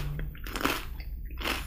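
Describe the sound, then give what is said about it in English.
A crunchy snack, the original flavor in a taste test against roasted red pepper, being bitten and chewed right into the microphone: a few loud, crackly crunches in an uneven rhythm, with a low steady hum underneath and no talking. “I'm very conscious of the crunching.”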